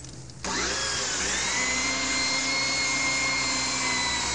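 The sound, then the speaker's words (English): A motorized drill whirs into life after a brief pause, boring through material with a loud, steady high-pitched grinding whine with a slight pitch dip early on, running continuously with no talking. “I'll just pray this drill doesn't break.”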